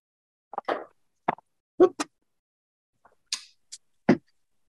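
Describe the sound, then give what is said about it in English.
A quick series of about seven short, hollow pops of balloons bursting in a drawing room, irregularly spaced and varying in pitch, with one sharper burst near the end. No one speaks. “You hear one of the balloons pop from the drawing room.”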